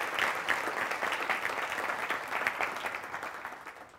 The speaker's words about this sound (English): Let's give the City Club and the APA Ohio chapter and all the people who showed up today a big round of applause for this wonderful day.